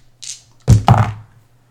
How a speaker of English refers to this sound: All right. So let's roll some dice.